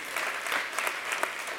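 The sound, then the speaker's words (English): A short burst of applause from a church audience giving thanks for the Savior in the morning, steady scattered clapping at moderate volume with no voices over it. “Yeah, that's worth a bigger applause than that.”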